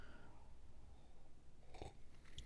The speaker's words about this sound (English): Sorry, I took a sip of my coffee, but that's how I feel about harmony.